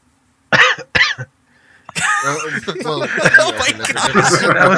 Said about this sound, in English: That was a legitimate cough, though.